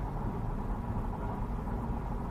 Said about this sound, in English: So I've been driving for half an hour in this electric car, and I haven't used any miles. It's in a flow right now. I'm pretty sure the battery gets charged by the rotation of the wheels, and I'm on a highway.